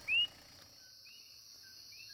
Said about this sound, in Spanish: En la carretera que pasa por el yunque, escuchamos los coquíes. Son unos sapos típicos de Puerto Rico, que suenan exacto como su nombre. Coquí. Coquí.